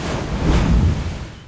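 A brief rush of ocean surf, a broad hissing wash that swells and then eases off, with a low rumble underneath and no voices.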